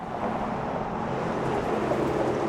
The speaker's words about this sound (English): It sounds like a bumpy ride. That's because the cars are driving over bricks that are almost 130 years old. The bricks on Michigan Avenue were laid in the late 1890s.